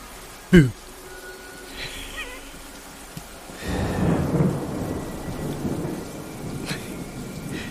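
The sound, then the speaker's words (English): Heavy, steady rain pours down in a broad, hissing wash that swells louder partway through, with a rumble of thunder and a sharp brief knock near the start. “Okay guys, as the rain comes down, I think we will leave it there.”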